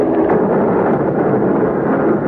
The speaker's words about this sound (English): I can remember thinking illogically that there was so much noise I couldn't hear any single explosion. It seemed almost like a silence until the tremendous wham of the first torpedo.